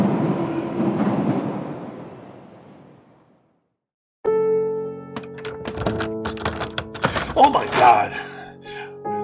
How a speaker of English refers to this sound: Hallway, trying to open the back door.